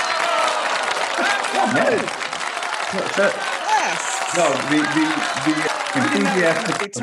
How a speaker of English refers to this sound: The enthusiastic applause, actually, I love, you know, it actually makes me feel like I'm in front of a studio audience, which you is cool. You are in front of a studio audience.